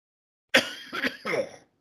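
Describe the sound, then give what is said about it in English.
Three quick, rough coughing bursts in close succession, fairly loud, with a throaty, hacking quality like someone trying to clear their throat. No one speaks. “Can't get a cough out of me tonight.”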